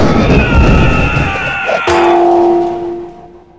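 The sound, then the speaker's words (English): A rough, rumbling clatter gives way to one loud strike of a firefighter's heirloom hammer on metal elevator doors, in an attempt to open them, leaving a bright metallic ring that hums on and slowly fades. No one speaks. “All of Firefighter Rudy's attempts to open these doors sure made some cool sounds.”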